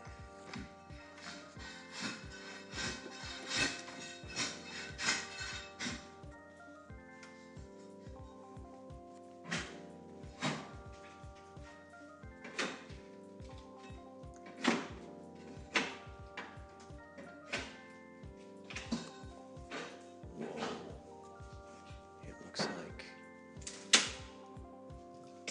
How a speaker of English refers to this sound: Oh, I see. So that's what you're doing. You're putting hardwood floors in the apartments. Oh my gosh, that's so crazy!